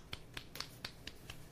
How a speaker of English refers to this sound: Can you hear me clapping?